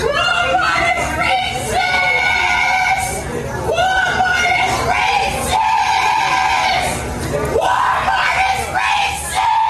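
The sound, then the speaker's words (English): A loud, chaotic crowd scene of about 30 watching people, with a woman shouting and screaming in high, strained bursts over a continuous din of overlapping voices, intense throughout. “And there is a crowd of about 30 people just watching.”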